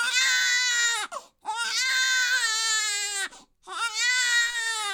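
baby crying

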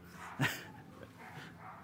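dog barking and whimpering

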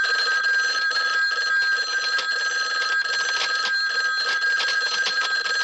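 telephone ringing

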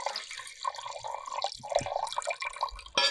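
wine being poured

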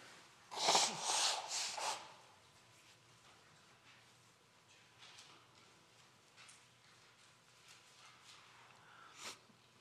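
person blowing their nose

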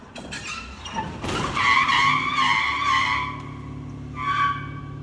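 car tires skidding

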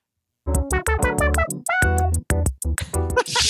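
cat meowing

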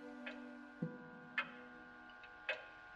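hall clock ticking

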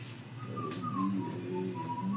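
person whistling

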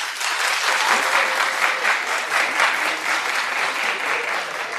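audience clapping

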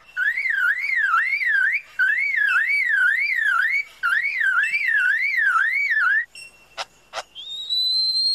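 car alarm

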